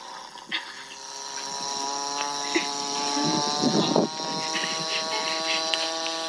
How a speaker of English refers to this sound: Instead, I found a YouTube video of a cow farting for 30 seconds. Let's play that.